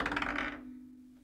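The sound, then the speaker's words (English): A quick burst of dice clattering and rattling across a table for about half a second during a tabletop role-playing game, rolling a 17, then settling into quiet over a steady low hum. “With a roll of 17...”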